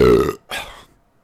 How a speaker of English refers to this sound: I had a burp.